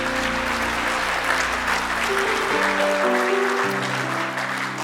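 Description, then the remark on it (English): A church audience at a morning service claps hands for Jesus in sustained, dense applause, a steady wash of many overlapping claps with sustained organ-like tones underneath that shift pitch partway through. “If you love Jesus, let me hear your hands this morning.”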